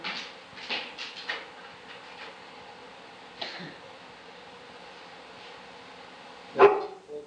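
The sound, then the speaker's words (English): A dog lets out a few scattered barks, a cluster early on, one in the middle and a louder one near the end, over a steady, rumbling background noise. “This dog watches television.”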